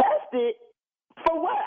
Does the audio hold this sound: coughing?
yes